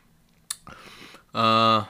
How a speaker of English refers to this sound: Okay, round two. So we always go in for two sips.